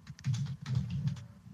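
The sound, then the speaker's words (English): Rapid clacking of an old-style mechanical computer keyboard, keys struck in quick irregular bursts, fairly loud, with no one speaking. “By the way, I have an old school keyboard. People always love it. They're like, "I love your keyboard. You can hear it."”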